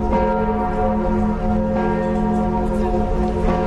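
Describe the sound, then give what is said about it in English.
The deep bells of Notre Dame Cathedral in Paris toll steadily for a memorial service for victims of the Paris attacks, their rich overlapping harmonics ringing and sustaining loudly throughout, with fresh strikes layering over the lingering resonance and no voices present. “The bells of Notre Dame tolled over Paris as they've tolled over the centuries in times of disaster and of national grief.”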